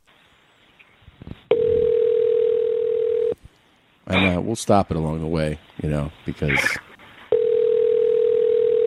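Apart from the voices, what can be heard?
phone ringing tone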